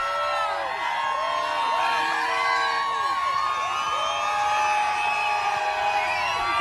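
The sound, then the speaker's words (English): A large crowd lined up in Detroit cheers nonstop as Trump arrives with his motorcade, a dense roar of overlapping voices with rising shouts and whoops rippling through it, loud and steady from start to finish. “So you just saw Trump arriving in Detroit with the motorcade, just miles of people lined up cheering him on.”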